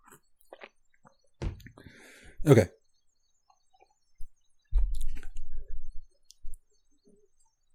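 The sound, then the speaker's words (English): Wet mouth noises: a couple of sharp slurps, then a second or so of low swishing and gurgling as water is swirled around the mouth to rinse it before tasting a Merlot wine, with a single short spoken word. “Let me wash my mouth out. Water.”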